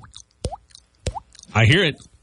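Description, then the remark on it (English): Someone imitates dripping water with their mouth: two sharp, wet plops about half a second apart, each with a quick upward pitch bend, followed by a short, louder voiced sound. “And this is a dripping water.”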